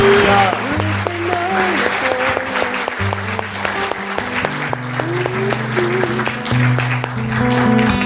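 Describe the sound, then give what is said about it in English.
A church audience applauds a group sitting down after being prayed for, with dense, steady clapping that lasts about eight seconds, while sustained low music chords and a few melodic notes play underneath. “Give them a big round of applause as they sit down.”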